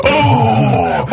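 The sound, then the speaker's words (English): An audience lets out a loud, shocked collective gasp that swells into a sustained wavering groan of surprise, lasting about a second with no speech. “You hear that? There's gasping.”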